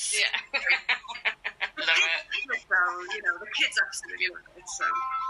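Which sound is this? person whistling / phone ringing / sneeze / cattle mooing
phone ringing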